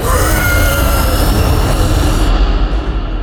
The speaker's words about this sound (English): I am throwing the switch on my Eldritch Cannon to switch it to Flamethrower, and I'm going Ghostbuster style. All right. So there's a gout of flame.